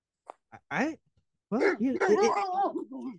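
A few short, sharp dog barks, then a longer stretch of rapid yelping and whining barks, close and fairly loud, with no talking over them.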